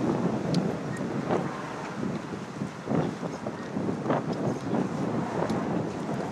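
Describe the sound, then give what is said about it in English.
Strong wind buffets the microphone outdoors while exploring a neighborhood, a loud steady roaring rumble with gusty bursts and thumping swells throughout, and no voices heard. “Is this too windy for you?”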